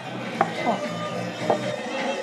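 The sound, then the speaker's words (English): Glass mason jars holding tequila drinks clink together in a toast at a restaurant in Washington, D.C., about three short, bright knocks spread over two seconds, against a steady hum of background chatter and noise. “It was hot, so we ordered a couple drinks. Cheers. Cheers.”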